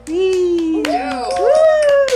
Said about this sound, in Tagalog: Palakpakan naman dyan!